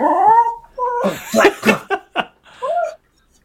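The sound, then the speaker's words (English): A dog gives a few short, sharp barks mixed with higher whimpering whines, in quick uneven bursts over a few seconds, fairly loud with no speech. “Is that a dog? Do I hear a dog?”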